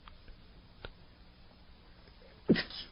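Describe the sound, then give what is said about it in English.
A single sharp sneeze bursts out near the end, fairly loud, following a few seconds of quiet room tone with faint clicks and no talking. “Excuse me for sneezing.”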